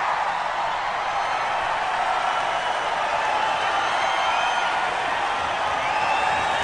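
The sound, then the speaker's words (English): A concert audience on a live album recording cheers and roars steadily, a dense wash of crowd noise with a few high whistles threading through it, holding at an even level throughout with no talking. “I think they're about to cheer. There it is.”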